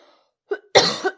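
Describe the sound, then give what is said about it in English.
A short throat-tickle cough: a small hacking catch followed by a louder, raspy cough burst that trails off, with no talking. “Sorry about that little tickle in my throat.”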